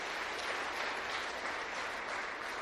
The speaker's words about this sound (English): Yeah, deserves an applause.